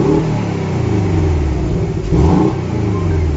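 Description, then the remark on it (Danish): The flat-four engine of a Porsche 718 Boxster sports car, just started up, revs up and down, its throaty mid-range rumble rising and falling in a couple of loud pulls with no one speaking. “Og jeg ved ikke, om I kan høre det, men der er altså lidt Subaru Impreza over den her lyd.”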